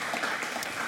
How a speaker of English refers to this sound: Good morning, church. So glad to have you here today. And can we give a round of applause to the band and them leading us today?